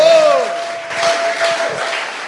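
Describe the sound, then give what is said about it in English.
An audience claps to celebrate victory in a steady, dense wash of applause that holds at a fairly even level throughout, with a sustained high tone ringing over the start. “Can you clap? Can you clap? At least celebrate your victory tonight.”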